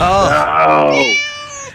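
Kittens meowing, a drawn-out plaintive mew sliding down in pitch, then a thinner, higher mew overlapping it as the first fades, both fairly loud and clear; four kittens hidden down the front of a man's pants while being smuggled into a country.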